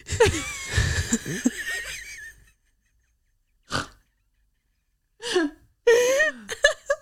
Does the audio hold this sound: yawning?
yes